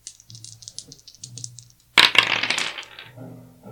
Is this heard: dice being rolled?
yes